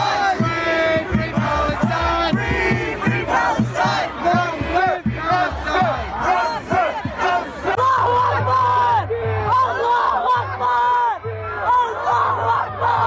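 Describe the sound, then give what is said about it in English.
A large crowd of pro-Palestinian protesters yells and chants in unison on the streets of Washington, D.C., loud and dense, with many voices overlapping in a rhythmic, rising-and-falling roar that continues without pause. “tens of thousands of pro-Palestinian protesters took to the streets in Washington, D.C.”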